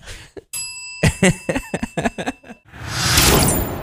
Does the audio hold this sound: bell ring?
yes